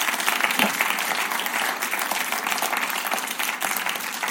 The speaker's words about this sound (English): Thank you. Give him a clap. Thank you.